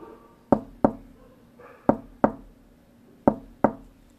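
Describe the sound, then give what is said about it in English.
Three pairs of sharp knocks rap on a wooden door, each double knock separated by a short pause, with a faint resonant ring after each strike and no voices. “He knocked at the door.”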